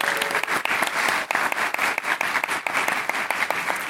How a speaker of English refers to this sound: A round of applause for Colin.